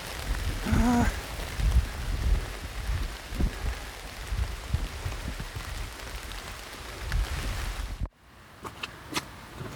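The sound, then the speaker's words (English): Heavy rain pours down in a dense, steady hiss during a hike up from a river, then cuts off abruptly near the end, leaving a muffled quiet with a few scattered drips and taps. “The last hike up from the river was an absolute downpour.”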